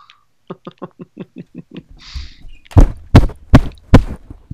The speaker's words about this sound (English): Punched my microphone. I'm so mad. Did you just bang your head? No, I punched it.